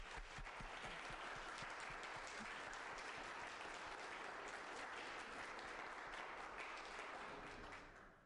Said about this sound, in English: We'll offer them a warm round of applause, and then we'll begin.